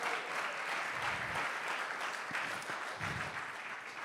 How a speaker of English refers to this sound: That's where you're supposed to clap. I'm talking about you.